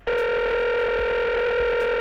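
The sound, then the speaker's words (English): A call-in phone line rings with a steady, buzzy electronic tone that starts abruptly and holds at an even, fairly loud level for about two seconds, with no voices. “calling in on the phone line because I can.”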